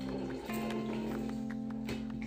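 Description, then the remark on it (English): A continuous airy slurping through a straw at the bottom of a water bottle holding the last water and ice, with a steady whistling tone and gurgly bubbling, fairly loud for about two seconds. “Okay, like my straw and my water bottle, like it's, there's water in there, but like, I can't get the rest of it, you know what I'm saying?”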